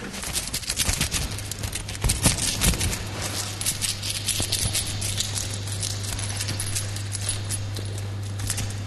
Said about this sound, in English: You jangle your coins, and people guess... how much financial worth is in your pocket. Yeah. Give us a jangle of those coins right now.